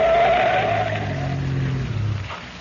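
A car skids at a curve with a sustained tire squeal over a low engine rumble, loud, the screech sliding down in pitch as the car swerves off to the side of the road and slows.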